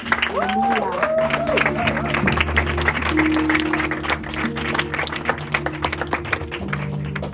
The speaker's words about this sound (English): Let us all stand up. And clap for the word. And clap for the word.